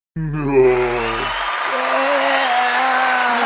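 crowd applause and cheering

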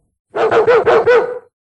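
dog barking

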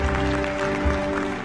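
audience clapping hands

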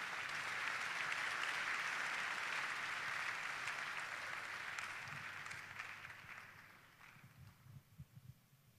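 audience clapping

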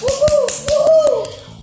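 audience applause

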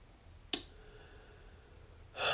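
loud snoring

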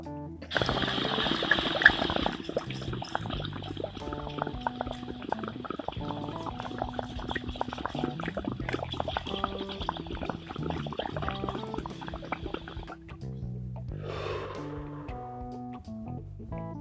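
taking a dab hit

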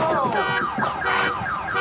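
car alarm going off

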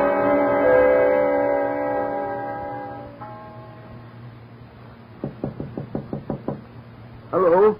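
knocking on a door

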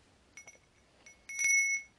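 small bell being rung

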